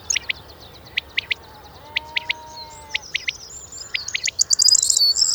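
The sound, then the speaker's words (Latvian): A common quail calls repeatedly in sharp, high three-note phrases with a clipped, dotted rhythm, repeated about five times, while other birds twitter faintly in the background and grow busier at the end. “bet visvairāk man liekam fascinē tas, par ko mēs arī, man liekas, kaut kad runājām, par ko es noteikti rakstīju savā slajā, tas paipalas sauciens, ja, ar Beethovena dziesmām, ja, tas pam, papā.”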